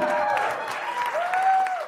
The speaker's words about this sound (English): So give her another round of applause.